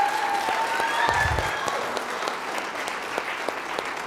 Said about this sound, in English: Didn't they do an outstanding job? Give them another hand clap, please.